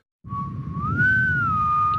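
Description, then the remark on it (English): A single drawn-out whistled note, fairly loud, that bends gently up and settles back down, carried over a low rumbling background with no one speaking. “You know, I think initially I didn't know if that was enough, just the whistle, but I think given the fact that all of, because I don't know if we actually said this, but all of this is over the phone, the entire game's over the phone.”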